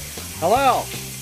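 Shower water runs with a steady, soft hiss, and a brief tonal sweep rises and falls over it midway through.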